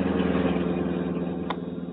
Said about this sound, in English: Meanwhile, a sleek black car hugged the pavement, past the corner of 10th and Cedar.